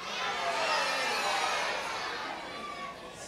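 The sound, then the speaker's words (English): A large audience of children at the Songbirds Super Fun Kids Rock Show yelling their friends' names all at once, a dense, overlapping clamor that stays loud and steady for a few seconds before tapering slightly. “Yell your friend's name out.”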